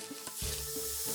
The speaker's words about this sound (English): Sorry, I fizz a lot when I'm nervous.